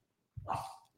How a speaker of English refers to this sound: Odie starts barking at Eclair because he wants to play.